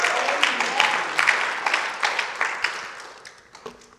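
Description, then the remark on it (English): A crowd cheers and claps for King Jesus, a dense wash of many hands with sharp rhythmic peaks, loud at first and then gradually fading toward the end. “Come on, we can cheer for King Jesus.”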